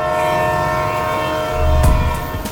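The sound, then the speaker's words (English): A train horn blares in a steady, sustained chord, loud, while the low rumble of the passing train swells beneath it, with a sharp clank near the end. “Do you know what I had literally footsteps from my back door? What? A train.”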